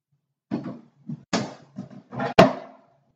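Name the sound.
door being opened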